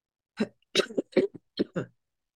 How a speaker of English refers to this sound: Had this little cough for a minute. And it's, listen, this little cough is just because I'm chill. And so my nose is running.